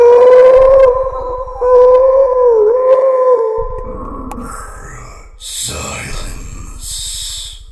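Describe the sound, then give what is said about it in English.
An undead mantis creature roars with a long, wavering, howl-like wail, then breaks into harsh, hissing screeches. The cry is loud, with no talking. “The undead mantis roars out again.”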